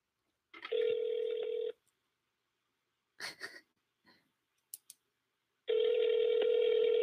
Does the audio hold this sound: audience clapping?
no